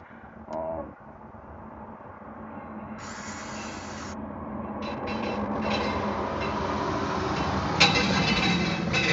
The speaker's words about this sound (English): School bus, all the kids coming home now.